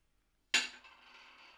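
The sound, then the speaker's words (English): A note die is rolled to pick a random root note for a melody: it hits a hard surface with a sharp clack after a moment of silence, then keeps rattling and tumbling in a softer, steady clatter that trails off gradually. No one speaks. “So we'll begin by rolling one of the note dice, which will give us a starting random note.”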